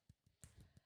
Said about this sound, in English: you got to use these knuckles. This is how you gotta put punch numbers in the keyboard